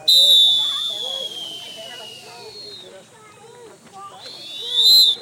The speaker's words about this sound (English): It's definitely not the type of rest break whistle I grew up hearing, and it sounds a bit more dramatic. Here's what it sounds like in the wild. All the lifeguards blowing their whistles in unison, a symphony of whistles.